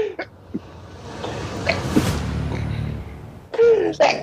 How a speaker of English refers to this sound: Oh, my gosh. Sorry. The oil boys. I had to sneeze and I was trying to